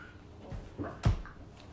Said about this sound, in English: Don't eat the chair. Not okay. That's Grandma's chair.